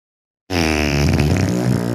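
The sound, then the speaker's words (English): A long, loud fart breaks out of silence with a buzzy, rasping tone that holds steady for over a second, wavering slightly in pitch before it cuts off. No one speaks. “That was a real fart. He actually farted.”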